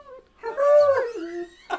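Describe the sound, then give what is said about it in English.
A dog holding a microphone lets out a drawn-out, wavering whine-howl into it, bending in pitch for about a second, then gives one short, sharp yip after a brief pause. “What is it with us and dogs and microphones?”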